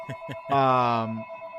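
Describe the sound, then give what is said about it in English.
An electronic ringtone of a phone used for breaking news sounds steadily throughout, moderately loud, while a voice briefly speaks over it near the middle. “That's the breaking news phone that we have going on here.”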